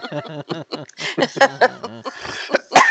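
Coughing: a few harsh, breathy bursts in quick succession, preceded by short voiced sounds from the same person.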